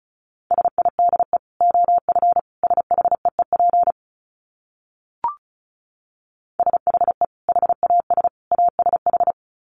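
Fast Morse code beeps at 35 words per minute on a single steady mid-pitched tone, two runs of rapid dots and dashes separated by a silent gap with a lone click, no voices.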